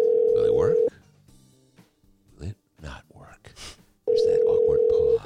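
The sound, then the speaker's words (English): A loud, steady telephone ringing tone from an outgoing phone call being placed sounds twice, each burst lasting about a second, separated by a pause filled with faint, indistinct voices. “My favorite part of the show, the phone call.”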